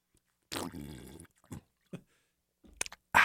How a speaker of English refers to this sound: Hold on, let me get a little sip of water here.